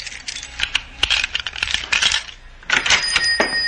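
Bright metallic jingling and clicking: a bunch of keys rattling and scraping as someone fumbles with them at a door lock, then a burst of ringing metal clinks near the end. No voices.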